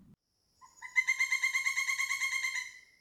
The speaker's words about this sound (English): He heard the birds again.